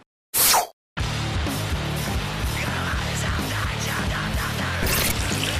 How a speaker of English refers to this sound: give him a golden shower.